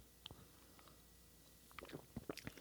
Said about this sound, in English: It looks really tasty. It's got a great head on it. Let's do a sip.